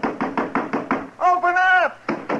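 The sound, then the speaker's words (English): Firm, rapid knocking on a wooden house door, about six raps in a steady rhythm, then a voice calls out "Anybody in there?" before two more knocks follow, fairly loud. “Go ahead and knock.”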